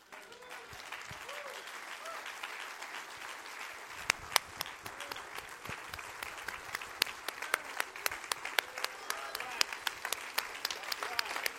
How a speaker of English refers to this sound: We need to clap for Jesus a little bit here tonight. Come on. Come on. Come on, we need to clap for him tonight.